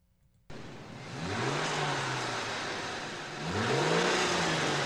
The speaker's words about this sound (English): in the driver's seat of the car, revving the motor, and Benedict is starting to get irritated with Columbo.